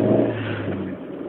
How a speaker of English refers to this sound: I realize you're eager for a show, but I'm actually still on my way home from work. I'm in my car.